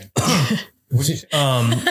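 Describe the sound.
A person coughs three times, loud and throaty, each cough rough and voiced, with brief pauses between them.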